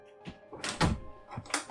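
A door being opened, with a series of handle rattles, clunks and a solid thud, several short knocking impacts spread over under two seconds, with no voices.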